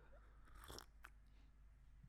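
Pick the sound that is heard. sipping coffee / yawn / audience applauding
sipping coffee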